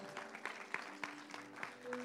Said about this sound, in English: Let's give God's word a hand clap of praise.